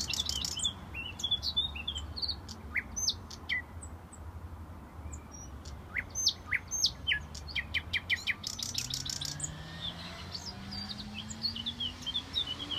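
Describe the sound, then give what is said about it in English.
Bright, rapid bird chirps and trills repeat throughout, clear, over a steady low rumble of traffic on a heavily trafficked city road very close by, with a vehicle's engine audibly rising and passing toward the end. “Oh, so that's the bird song.”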